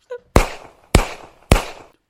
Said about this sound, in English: Oh my God, those sounded like gunshots. Yeah, but it could also just be fireworks. There's been a lot of that around recently.